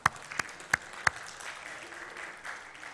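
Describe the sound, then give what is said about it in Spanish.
Audience applause welcoming visiting family members: four sharp, loud claps ring out at the start, then a steady, softer patter of many hands clapping continues to the end. “¿Por qué no les damos un aplauso?”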